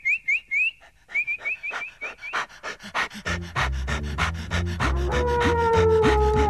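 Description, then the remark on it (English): A Great Dane puppy pants rapidly, quick rhythmic breaths with a whistly edge, growing louder and more strained toward the end. No one speaks. “But not content with standing there teasing him for half an hour, you have to go and leap over the fence and frighten the life out of our poor little Great Dane puppy.”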